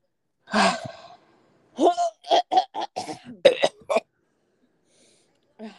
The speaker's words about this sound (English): That felt so good, just clearing my throat.